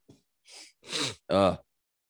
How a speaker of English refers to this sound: I'm just gonna have to cut out a bunch of coughs. And leave some in.